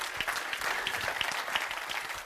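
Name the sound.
audience clapping hands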